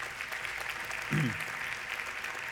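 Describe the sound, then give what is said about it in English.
A church audience claps steadily, a dense, even wash of many hands that lasts the whole clip, applauding a pastor's news that his family will adopt a baby, with a single voice briefly rising over the applause partway through. “Every time you clap, it cuts into my sermon time.”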